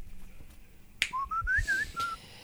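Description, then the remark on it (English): A sharp click, then someone whistles the old Android text message jingle, imitating the phone tone in a quick run of five or six bright, rising and falling notes, fairly loud, with no talking. “That was the old text message sound for Androids.”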